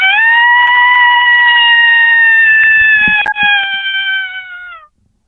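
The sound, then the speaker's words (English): A person imitates a dog's subtle, questioning interrogation howl: one long, steady, high-pitched tone held for nearly five seconds, dipping slightly in pitch near the end before cutting off, with a few faint clicks midway. “this would be like a subtle interrogation howl.”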